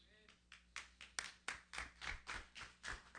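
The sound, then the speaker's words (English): Scattered hand claps from only a few audience members, about a dozen sharp claps in an uneven rhythm, moderately loud, rising briefly then continuing steadily with no one speaking. “There's only a few of you who clap, so the rest of you are in trouble.”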